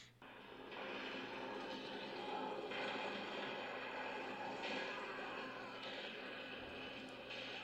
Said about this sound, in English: Sounds like a long intro. Lots of war noises, helicopters, gunshots. Extreme.